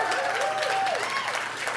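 A crowd breaks into steady, dense applause, many hands clapping at once, with faint cheering voices mixed in, sustained at an even level throughout.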